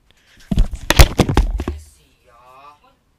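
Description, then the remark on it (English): A quick burst of computer keyboard typing, a dozen or so sharp clicks in rapid succession, followed by a faint murmuring voice. “Let me type it in.”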